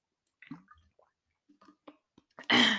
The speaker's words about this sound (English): I'm going to take a drink of water here.